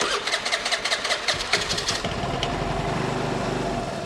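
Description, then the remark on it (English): A brand-new, bright yellow motor scooter's engine cranks with a quick run of rhythmic sputters for about two seconds, then catches and settles into a steady idle hum. No one speaks. “My brand new, bright yellow scooter arrived a few months ago.”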